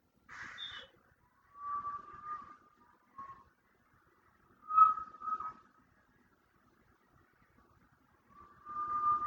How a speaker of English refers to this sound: So with that one for me, if you notice, like right at the very beginning, you hear the birds and then it just gets like chopped off. And to me, it feels like I'm going through like a tunnel or like I have earplugs in or there's water in my ears